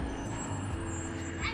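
A large bus engine rumbles steadily, with a short burst of air-brake hiss near the end.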